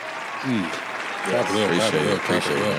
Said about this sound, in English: Clap it up.